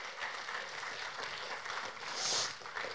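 Steady audience applause, a dense, hissy wash of many hands clapping for the full few seconds, with a brief high whistle-like peak near the end and no one talking.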